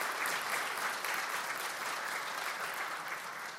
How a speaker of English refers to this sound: First of all, we celebrated our 52nd wedding anniversary. That deserves a clap.